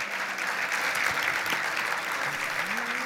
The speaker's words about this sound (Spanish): ¡Aleluya! Aplauda al Rey de Reyes. Al Señor le gusta la excelencia. Aplauda, aplauda un poco más.